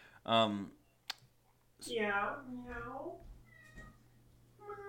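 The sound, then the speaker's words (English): A cat screeches and meows: a short, loud cry, a brief click, then a long, drawn-out wailing meow that falls in pitch, followed by quieter rustling over a low steady hum. “I hear a cat. I hear a cat screeching.”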